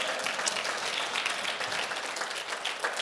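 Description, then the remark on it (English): A church audience breaks into sustained hand-clapping applause as praise to the Lord, a dense, steady wash of many claps from a large crowd, with no talking over it. “Give the Lord another hand clap of praise today.”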